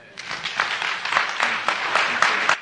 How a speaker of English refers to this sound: will you just give him a hand clap?